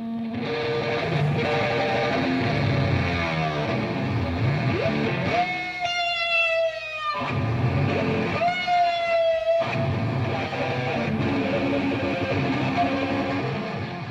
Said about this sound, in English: feedback, which that's the howling when the sound of the guitar is feeding back on itself because the strings are vibrating and then it's being picked up and feeding back on itself.